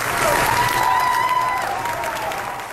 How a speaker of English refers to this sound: That crew members were clapping and cheering for the captain as he left the ship was a sign that they trusted him, that he was acting in their best interest.